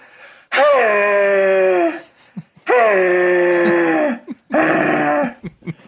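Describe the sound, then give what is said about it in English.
A person's voice imitates an axis deer stag's rutting roar: three loud, drawn-out groaning bellows, each dropping slightly in pitch, with brief pauses and breaths between them. “So they call their, you know, when they're in the rut, they roar. And you want me to do that one too?”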